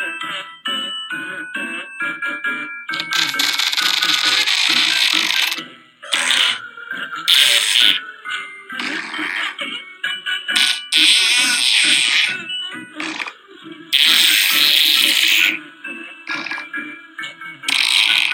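A string of raspy, sputtering fart noises attributed to Rudy Giuliani, edited together over a tinkly musical tune as a Christmas-spirit novelty, the bursts varying in length and landing in a rough rhythm, fairly loud, with no talking.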